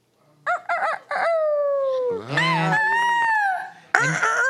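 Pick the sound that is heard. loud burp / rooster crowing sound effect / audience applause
rooster crowing sound effect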